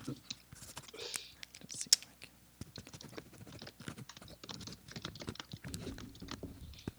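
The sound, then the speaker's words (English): Quiet scratching of an Air Canada pen on paper as someone writes notes outlining an email, in quick irregular strokes and taps, continuing steadily for several seconds with faint whispery breaths in the background. “I'll make some notes on this pen of paper.”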